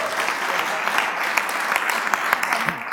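An audience claps steadily and densely for several seconds, a bright, continuous patter of many hands with occasional sharper individual claps standing out, with no voices audible.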